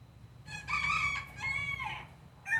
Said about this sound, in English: The sounds of countless free-ranging roosters and native birds add to the aura of this place.